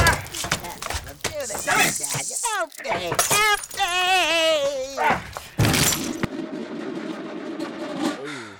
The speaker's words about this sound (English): it's time of that damn typewriter got the shoe treatment. Come here, you little bastard! Come here!